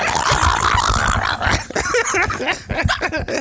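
A dog growls in a steady, rough rumble, then its noise breaks into shorter, pitched snarls and whines over the last couple of seconds.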